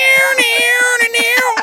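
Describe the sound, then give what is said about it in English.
A cat screeches in one long, loud, high-pitched wail that wavers slightly in pitch, over a steady rhythm of soft, low thumps. “You are a screeching cat.”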